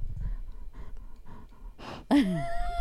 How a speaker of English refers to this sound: She's sniffing the mic.